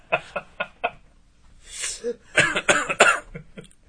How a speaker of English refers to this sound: Still have that cough? I know. It won't go away. And it's just like hanging on.